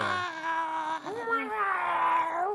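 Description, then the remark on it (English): A creepy, gargly cat meow: one long, drawn-out moaning cry that wavers and bends in pitch, sounding strained and half-dying, loud and unbroken for over two seconds. “A creepy meow. Like oh, that, yeah. It's you like know? Gargly and like half dying.”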